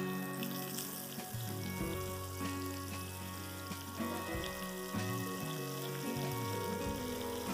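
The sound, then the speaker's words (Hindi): Steady crackling sizzle of onions being added to hot oil and frying to caramelize, fairly loud, with a continuous hiss throughout and faint stirring bumps; no one speaks. “So now I am adding onions.”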